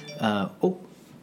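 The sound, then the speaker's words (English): A phone notification chime sounds as two quick tones, a longer ringing note followed by a shorter one, clear and bright over a faint background hum. “I'm getting notifications.”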